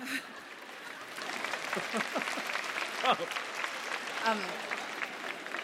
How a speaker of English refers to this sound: Oh, sorry, I didn't mean to interrupt the applause.